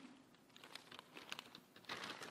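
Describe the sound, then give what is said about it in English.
Irregular crinkling and rustling of a paper bag being handled, with quick papery crackles that bunch up and swell louder near the end, with no talking. “So I decided, I didn't put a heart on my paper bag yet, but I did put some special memories.”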